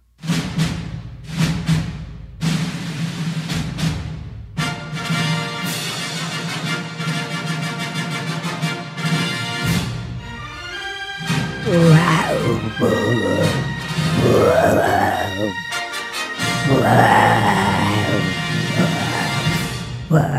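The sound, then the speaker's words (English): A steady musical intro plays, then a man's voice imitates the MGM lion's roar with several drawn-out, growling bursts that rise and fall in pitch over the continuing music. “I was trying to do the MGM lion.”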